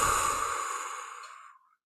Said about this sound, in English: Take a deep breath in and exhale through your mouth. It can be audible. Let's do it together. Inhale and exhale.